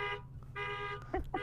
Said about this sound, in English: Oh, there's an alarm. You want to know what the alarm is?